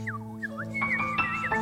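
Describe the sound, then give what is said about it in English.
A songbird sings clear, whistled notes that swoop up and down in quick repeated phrases in an aviary, over a steady low droning hum in the background. “The sound, beautiful sound of songbird music is in the air.”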